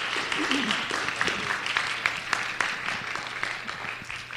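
An audience applauds steadily for several seconds to welcome a guest speaker, a dense wash of many hands clapping at an even, fairly loud level, with faint crowd murmur mixed in.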